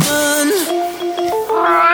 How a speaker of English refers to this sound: Yeah, I love that they did all those cats in there.